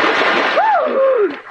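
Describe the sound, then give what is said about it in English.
A loud splash of a person diving into clear water about 30 feet deep: a dense rushing burst, with a brief rising-and-falling whistling tone over it before it fades. “Can you dive? Oh, sure.”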